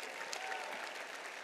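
An audience claps steadily as two people come up to join the speaker, a dense, even patter of many hands that holds a constant loudness throughout with no break or voices standing out.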